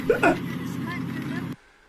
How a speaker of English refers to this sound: I never saw a car in here. It's a Power Wheels car, man. It doesn't bother me. What bothers me is you have a little kid in here that doesn't have a driver's license. He's just a little kid and you're not with him. It's not a real car.